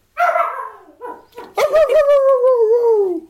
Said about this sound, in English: Shut up, dog.